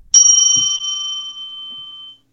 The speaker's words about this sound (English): I love that bell.